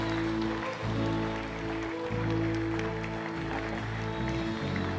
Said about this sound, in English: Let's give these people a hand clap today. Amen. Hallelujah.